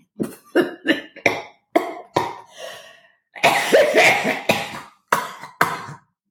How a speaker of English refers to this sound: I'm coughing here.